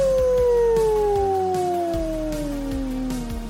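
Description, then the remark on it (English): A single long, loud wolf howl, slowly sliding downward in pitch over a few seconds above a steady rhythmic beat in the background. “The Wolf. Ow, ow, ow!”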